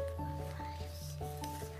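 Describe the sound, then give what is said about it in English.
Soft, repeated rubbing strokes on a tree to make it warm, a dry brushing scrape coming every fraction of a second, over steady sustained musical tones that shift pitch in gentle steps. “Rub the tree to make it warm. Rub, rub, rub.”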